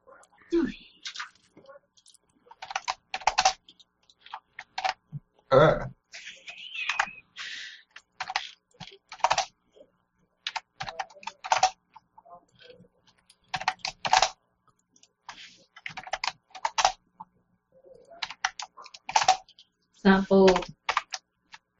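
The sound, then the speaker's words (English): Close, quick keyboard typing in irregular bursts of clicks with short pauses between, while people talk quietly in the background. “How do you bold it with keyboard shortcut?”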